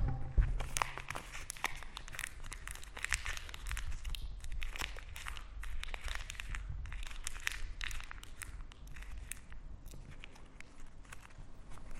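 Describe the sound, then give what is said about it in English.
A new, crisp £10 paper banknote is crumpled by hand, a dense run of crackling, crinkling rustles that continues steadily with small bursts and pauses, no voices present. “It's all crumpled now.”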